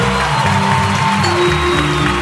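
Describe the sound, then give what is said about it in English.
A loud, sustained wash of audience applause and cheering welcoming a motivational speaker fills the whole moment, dense and continuous, with a low tonal hum running underneath. “make some noise for our motivator, Fred McCoy. Clap it up”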